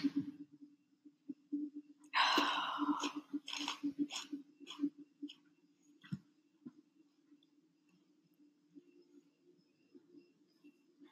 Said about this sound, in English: Also, me immediately crunches a Cheeto.